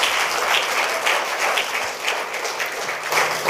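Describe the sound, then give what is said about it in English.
A crowd claps their hands together in sustained, dense applause given as a clap offering to the Lord, steady and fairly loud throughout, with many overlapping claps blending into a continuous roar and no voices standing out. “Give the Lord a good clap offering.”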